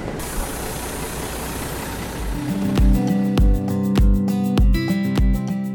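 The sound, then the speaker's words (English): A large diesel bus engine idles, a deep steady rumble with rhythmic low thumps, swelling louder after a couple of seconds of hissy background noise. “A morning train will take you to the town of Liptovský Mikuláš, and there, you just hop on a bus that will take you straight to the ski resort.”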